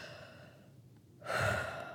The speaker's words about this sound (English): And an antidote to the feelings that crop up is breathing. So I do it a lot, like intentionally take a deep breath.